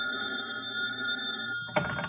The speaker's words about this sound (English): I was in bed in my hotel when the phone rang.